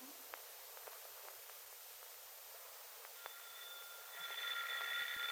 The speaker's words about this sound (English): It's the doorbell.